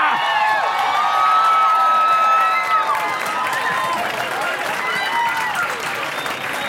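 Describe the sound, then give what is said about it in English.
Sustained audience applause for a show's special guest, a weather reporter, with bright, high-pitched cheers and whoops riding over dense clapping, staying loud throughout and easing only slightly toward the end. “And ladies and gentlemen, keep that applause going for our very special guest, weather reporter, come on down,”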